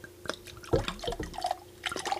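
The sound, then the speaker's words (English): Sherry pours from a bottle into a glass for a toast, in a quick, uneven trickle of clinks and splashes, with bright drips and gurgles rising and falling over about two seconds, no voices. “Got my bottle out because, listen, I might have already had a cup or 2. Now I get some more.”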